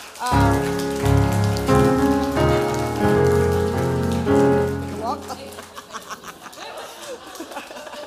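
A crowd claps steadily over sustained musical chords; after the music stops, the applause carries on by itself as a dense, crackling patter with a few chuckles mixed in.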